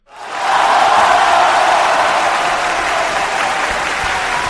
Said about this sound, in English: They're all cheering for the Rumours, or they're also like... It's both evenly spread.